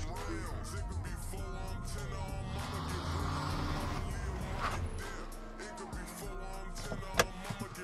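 A car's engine rumbles steadily, easing off as the vehicle pulls up and settles to a stop, with muffled voices in the background and a short knock near the end.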